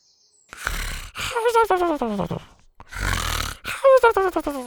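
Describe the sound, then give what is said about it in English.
A voice imitates Scoot, a small, pudgy Triceratops, snoring under a back seat: two cycles of a raspy, snorting inhale followed by a squeaky, whistling exhale that slides downward, fairly loud. “Zeta had to circle back a minute later when she realized she'd forgotten all about Scoot, who was still snoring happily under the back seat.”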